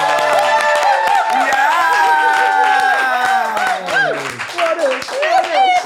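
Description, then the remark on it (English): Loud, sustained applause from a crowd for guests Phil Dunster and Hannah Waddingham, dense clapping mixed with many voices cheering and whooping in overlapping rising and falling tones, holding steady for the whole stretch. “Okay, our guest today, can we have a round of applause, please, for Phil Dunster and Hannah Waddingham?”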